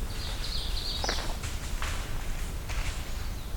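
Deer bounding away through the woods: a few irregular, crunching thuds through leaf litter, with a brief high bird whistle near the start and quiet forest ambience beneath.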